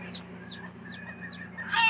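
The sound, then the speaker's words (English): Hens fighting, with quick, agitated clucks repeating about every half second, ending in a sudden noisy scuffle, all over a steady low hum. “Bet you didn't know that hens can fight, but they can.”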